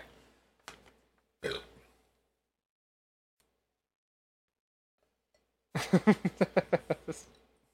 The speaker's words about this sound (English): I'm gonna take another drink. Hold on, I just burped back that PBR.